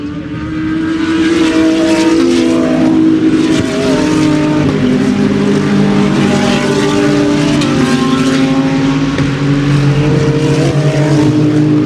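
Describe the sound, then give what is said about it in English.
Loud, roaring race cars, among them BMW cars, sweep past one after another on a race track, their whining engine pitch rising and falling continuously for several seconds, with no one talking. “Yeah, we're going to crank it up here. See if you can identify each car.”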